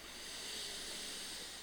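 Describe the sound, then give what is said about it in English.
A deep inhale through the nose as part of a deep belly breathing exercise, the first of three inhales: a steady, airy hiss of breath drawn in for under two seconds, soft and even, with no talking over it. “Inhale through the nose.”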